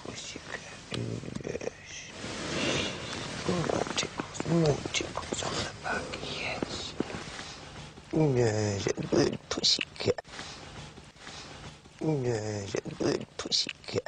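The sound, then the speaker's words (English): A person imitates a cat, producing several drawn-out, wavering meows between breathy, purring and whispery noises. “Would you like me to be the cat?”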